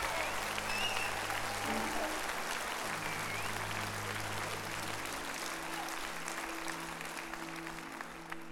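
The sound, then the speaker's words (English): A church audience claps steadily to give God praise, a dense, continuous wash of applause, with sustained low keyboard chords humming underneath and the clapping tapering slightly toward the end. “And if you believe it, clap your hands and give God praise right now.”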